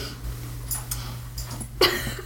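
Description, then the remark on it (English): A dog, Kaylee the Thorgy, shuffling and snuffling under a desk: a few short, breathy bursts, the last one sharper, like a snort, over a steady low hum with no talking. “Sorry, that pause was the dog making noise underneath the desk, getting at the cuddling.”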